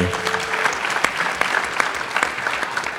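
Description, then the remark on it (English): An audience at a CBTU gathering claps steadily and densely throughout for the organization's leadership team, a bright crackling wash of many hands with a few sharper individual claps standing out, while a voice briefly trails off at the very start. “The entire leadership team here at CBTU, give them a round of applause.”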